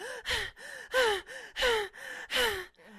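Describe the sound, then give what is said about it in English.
A person demonstrates the deep, heavy breathing of sex: five or six rapid, rhythmic in-and-out breaths with voiced, gasping edges, loud and steady, with no talking. “I just got high from those few breaths, but I'm a cheap breath date at this stage.”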